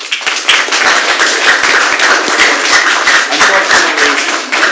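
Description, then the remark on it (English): A studio audience claps steadily, a dense wash of many hands, holding a constant level for a few seconds without letting up. “Just studio audience, just by a show of applause, how many of you are looking forward to Tuesday?”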